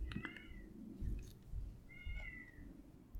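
A cat meows twice, a short high cry near the start and a longer drawn-out one after a pause, over a low rumbling background.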